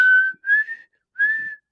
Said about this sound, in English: Was that better? Yeah, I think you just need to work on your whistling in general.